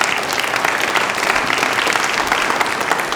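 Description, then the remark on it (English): An audience claps, after a call to donate to the Nehemiah Fund, in steady, sustained applause, a dense, even patter of many hands that holds at a constant loud level throughout, with no voices standing out. “And those of you that are clapping, you understand this.”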